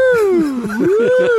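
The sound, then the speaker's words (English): A voice imitates a fire brigade siren, a loud sustained wailing tone that sweeps down then back up in pitch, with a rough, buzzy vocal texture throughout. “What's that one? The fire brigade, correct.”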